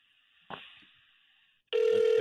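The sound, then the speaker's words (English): A telephone rings with a thin, sustained electronic trill, a sharp click partway through, then a sudden loud, buzzy burst of ringing at the end. “Oh, hey, my phone's ringing.”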